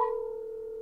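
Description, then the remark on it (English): A steady electronic phone tone hums for under a second, a single clear sustained pitch like a line ringing while a call to a cell phone is dialed, with no voices. “I'm not calling his shop. I'm calling his cell phone.”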